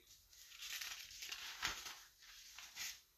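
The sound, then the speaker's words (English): Rustling paper crinkling and shuffling in bursts as someone searches for lost notes, with a sharper crackle in the middle and another near the end, no voices over it. “Hang on, y'all. I lost my paper.”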